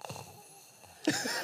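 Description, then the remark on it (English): A voice imitates a quiet, soft, breathy snore, a faint rasping inhale followed by a louder, gravelly exhale, short and somewhat muffled as if from a distance. “And then you got that quiet snore too.”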